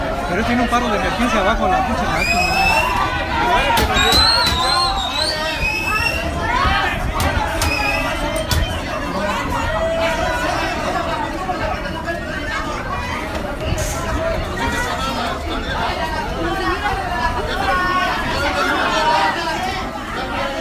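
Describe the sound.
A crowd of commuters fills a subway platform with steady, dense babble, many overlapping voices at an even loudness throughout, with occasional brief clatters and higher-pitched calls breaking through.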